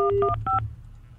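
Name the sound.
telephone keypad dialing tones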